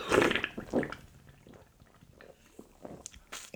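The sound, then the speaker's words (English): Someone sips a drink: two loud slurping pulls at the start, followed by quieter wet mouth clicks and small swallowing sounds, with no talking. “Let me just have a little sippy, sippy, sippy.”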